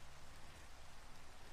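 Steady rain falls continuously, a dense, even hiss of drops pattering on a surface with no pauses or other sounds, fairly soft throughout.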